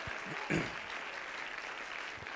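An audience claps their hands to magnify the name of the Lord during a sermon, a dense, steady wash of applause, with a brief louder swell near the start and faint voices underneath.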